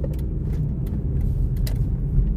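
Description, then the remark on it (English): A truck drives past, its heavy engine making a loud, steady low rumble throughout, with a few faint clicks and rattles on top and no one talking. “Move truck, thank you.”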